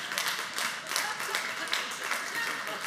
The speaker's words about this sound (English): If you're going to clap like that